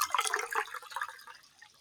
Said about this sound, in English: You can hear this water or liquid type dripping from my body. Gather that, and into each bottle, I just kind of...